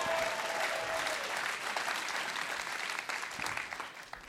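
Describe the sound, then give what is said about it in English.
An audience at the LiveWire show applauds the house band steadily for about four seconds, a dense, even patter of many hands clapping at constant loudness, with a faint sustained tone briefly audible at the start. “Right, let's hear for the house band,”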